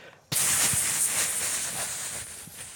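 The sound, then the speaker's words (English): Air hisses out of a hole in an inflatable boat far out in a bay: a sharp, loud, high-pitched rush that starts abruptly after a moment of quiet and holds steady, with a few faint low bumps underneath. “And they heard the one sound you do not want to hear on an inflatable boat.”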